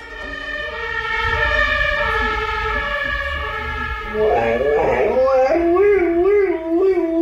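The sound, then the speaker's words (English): An emergency vehicle siren wails loudly and steadily, then a dog in Germany howls along, its wavering pitch imitating the siren's rising and falling tone until the end. “Okay, so this dog in Germany hears the siren of an emergency vehicle and then does a pretty good job of imitating it.”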